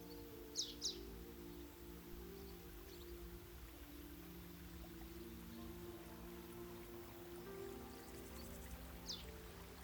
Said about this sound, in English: As you continue to walk, you can hear a little river in the distance.